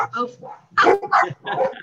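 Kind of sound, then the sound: animal, dogs barking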